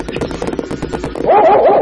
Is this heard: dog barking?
yes